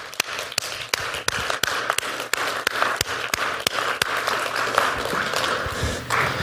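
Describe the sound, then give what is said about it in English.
An audience applauds steadily for several seconds to welcome a guest invited up to join the host, a dense wash of clapping with a few sharp, distinct claps standing out. No one speaks over it. “So I want you to give a big warm welcome”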